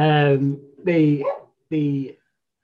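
A dog barks three times, each bark loud, drawn out and tonal, with brief pauses between them and no talking underneath.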